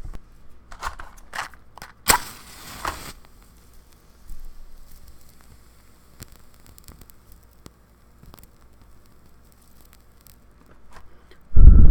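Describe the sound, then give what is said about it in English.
A brand new bundle of rosemary crackling as it burns for smoke clearing, with sparse, irregular pops and snaps, a brief louder rush of crackle early on, and no voices. “I love the way rosemary crackles when you burn it.”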